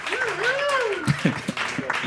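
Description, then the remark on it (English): Audience applause with a handful of distinct, scattered claps, while a voice rises and falls in a drawn-out whoop over the top. “clap your hands. Keep it going”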